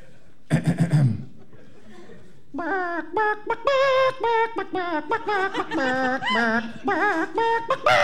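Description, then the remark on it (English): A chicken clucks in a rapid, irregular series of short, nasal calls, fairly loud, after a brief flurry of rustling at the start; no one speaks. “The chicken, yet again, has never and shall never play for a puppet show.”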